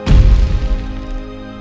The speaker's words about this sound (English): Dervetter lets his great icy hammer fall to the ground with a crashing boom.